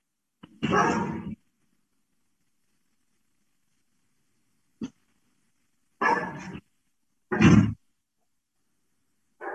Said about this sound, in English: Whose dogs are these?